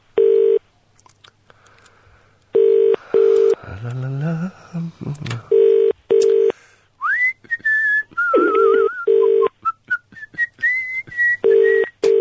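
A phone ringing tone sounds in repeated double bursts of a steady, mid-pitched buzz, while someone whistles a wandering tune between and over the rings, with some rustling noises early on.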